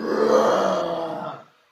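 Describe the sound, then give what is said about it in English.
A person voices a long, guttural ogre's scream, a huge, mighty, harsh, gravelly growl that holds steady and loud for over a second before cutting off abruptly. “At the end of your turn, the ogre lets out a huge, mighty scream.”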